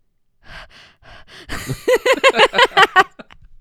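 Heavy breathing right up against the microphone: a few airy breaths, then a quick run of about seven louder, voiced huffs like panting, ending in faint exhales.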